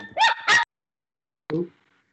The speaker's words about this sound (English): That is an incredibly noisy dog rat.